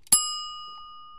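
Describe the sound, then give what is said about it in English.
A single bell strike rings out clearly, its bright metallic tone sustaining and slowly fading over about a second with no voices present. “That bell tells us that that's all the unpacking we have for this episode.”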